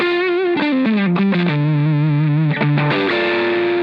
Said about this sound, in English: It sounds like it's going to blow up, but it's not yeah. blowing up yet. Right. Where it's sizzling, then it's blowing up. Yeah, exactly. Yeah. So that's kind of the sweet spot I've found with like silicone fuzz faces.